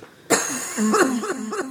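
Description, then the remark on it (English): A sudden, harsh cough bursts out, followed by several shorter voiced hacks in a rough rhythm, fairly loud with no talking. “Now I get to hear it echoed. Like coughing and sneezing.”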